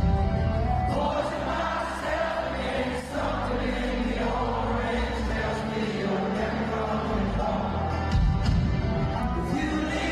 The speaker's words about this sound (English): Whole Helix screaming it loud and a really young crowd